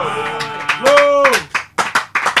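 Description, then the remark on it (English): Sustained voices ring out from a church audience, then sharp uneven claps break in, a handful of people clapping at a loose, irregular rhythm. “I thought you were going to clap.”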